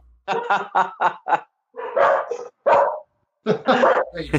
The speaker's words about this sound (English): And it's entirely appropriate that we have dogs interrupting us. Wound up, and it was. There are two dogs at play here.